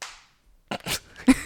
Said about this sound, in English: I don't know why I slapped my leg as soon as I answered.